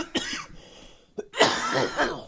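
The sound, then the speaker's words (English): A man's short burst of harsh coughing after lighting a cigarette: one sharp hack, a brief pause, then a longer raspy fit of a few rough coughs, fairly loud with no talking. “Cough all that cancer out of there.”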